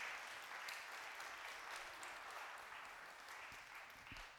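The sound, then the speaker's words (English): An audience claps hands for the choir in sustained, dense applause, the many overlapping claps blending into a steady crackling wash that holds at an even level throughout, with no voices standing out. “we clap our hands and say amen for this great choir.”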